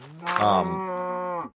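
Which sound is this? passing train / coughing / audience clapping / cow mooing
cow mooing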